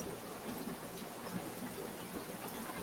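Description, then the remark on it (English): Steady outdoor rain blowing sideways, a continuous soft hiss with scattered patters, fairly faint and unbroken throughout, with no voices. “Yeah, I'm legit getting rained on. It's sideways rain.”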